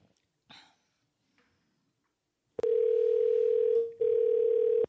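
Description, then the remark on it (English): A loud, steady telephone dial tone at one mid pitch, heard while dialing to call someone, starts abruptly after a couple of quiet seconds with faint breaths, dips briefly once, then continues to the end. “Dialing her up.”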